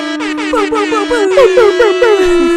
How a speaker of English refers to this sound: Oh, hell yeah. Air horns.